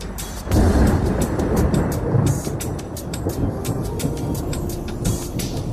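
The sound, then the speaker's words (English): A thunder sound effect on The Quiet Storm show: a heavy rumble swells in after a brief moment and rolls on steadily, with crackling bursts scattered over the deep roar. No one speaks. “I told you, the thunder's never going to get old.”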